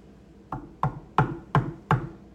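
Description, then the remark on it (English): Five firm knocks on a door in a steady, slightly uneven rhythm, each a sharp, resonant thud, with a quiet background and no voices. “I'm knocking. Would you please just open the door and let me in?”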